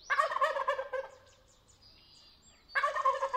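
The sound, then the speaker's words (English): Two loud bursts of rapid, rattling gobbles from wild turkeys at dawn just outside Patagonia, Arizona, leaving a tall sycamore tree where they roosted to find breakfast, with a quieter pause between them filled by faint chirping birds in the background. “It's dawn, and the wild turkeys who roosted all night in a tall sycamore tree are heading off to find breakfast and making sure everybody knows about it.”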